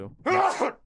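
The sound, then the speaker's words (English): A short, voiced sneeze, faked or exaggerated, blended into spoken words: a brief vocal lead-in, then a loud breathy burst with a sharp hiss, over in under a second. “I'm sorry, I'm just allergic to bullshit.”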